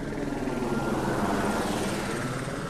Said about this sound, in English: Today the helicopters were out around here. You know, we're not far north of the Lincoln Tunnel here in the Hawk. And sometimes these helicopters will hover above the mouth of the Lincoln Tunnel.